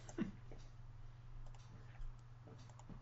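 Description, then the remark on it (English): Quiet, scattered keyboard clicks: a handful of sharp taps spaced irregularly over a steady low electrical hum, with no talking. “Sorry, it's taking me a few moments to figure out how to keyboard.”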